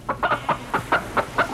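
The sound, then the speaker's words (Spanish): A hen clucks in a quick, steady series of about eight short clucks, fairly loud, with no voices or other sounds. “El gatito recibe una cantidad de huevos que ha puesto el ave de corral.”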